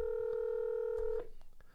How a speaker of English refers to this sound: Apparently somebody from Atlanta wanted to talk to me. I guess didn't realize. It's amazing. It's a Christmas miracle. My phone is actually not stuck in Do Not Disturb anymore, and now it's interrupting a podcast.